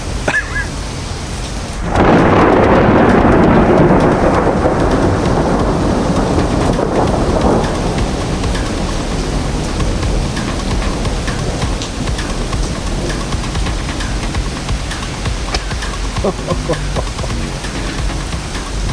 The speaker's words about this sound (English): We're just exactly in the middle of this storm. There's no wind whatsoever. It's coming down straight from the top, straight from heaven.